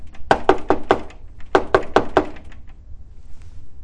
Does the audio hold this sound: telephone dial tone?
no